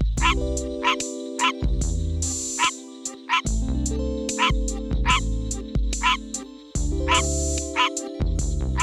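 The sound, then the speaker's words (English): A green tree frog repeats short, nasal, barking calls in a steady rhythm, roughly two per second, clear, over sustained low background music. “Although each frog tries to put his own unique spin on it, the call is usually a variation of a short, nasally bark.”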